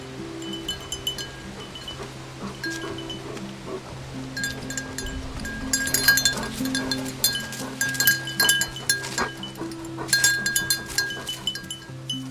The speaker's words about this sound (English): Here's audio from her footage of the dogs. You can hear their bells.